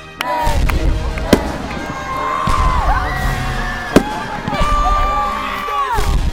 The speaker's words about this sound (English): Along with their numerous jobs around camp, Mendy and Tyson put on a great fireworks show for all of us to watch at the end of the day.